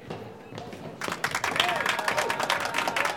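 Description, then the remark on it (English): A small crowd of spectators cheers and claps for people playing D&D as they fight a big bad, building from murmuring voices into a dense burst of applause and excited shouts after the first second, staying loud and steady to the end. “You know, studies have shown that cheering spectators lead to increased performance in tight situations.”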